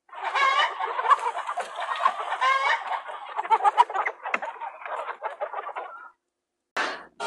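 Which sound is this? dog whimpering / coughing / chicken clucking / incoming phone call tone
chicken clucking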